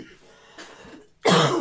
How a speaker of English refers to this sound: I have the coughs really bad. I keep trying to go away from the mic, but sorry.